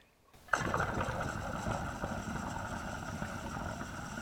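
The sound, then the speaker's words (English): After a brief silence, water abruptly begins popping and bubbling through the sections of a Honey Jar Recycler as it is drawn on, a steady, loud gurgling rush peppered with irregular snaps and pops that continues to the end. “Now, that doesn't mean that it's like heavy drag that's hard to pull on, but you're actually hearing the water like snapping and popping through sections.”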